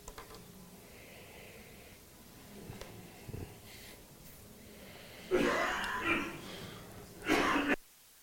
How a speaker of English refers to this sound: Everyone's coughing today. Everyone's going for it.